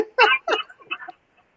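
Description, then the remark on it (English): A person imitates a dog barking, giving three short, loud, voiced yelps in quick succession. “Bro, you doing, you barking?”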